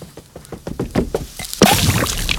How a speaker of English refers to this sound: Sid's just burnt a hole in Woody's forehead with a magnifying glass and he just dunks it in the dog bowl. Or is it a bowl of cereal? Yeah, it's a bowl of cereal.